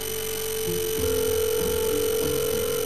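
A phone line rings on an outgoing call: a steady, electronic ringback tone holds for a few seconds over faint low rumble, with no one talking.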